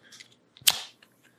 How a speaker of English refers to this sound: I think we might have to crack one open for this one.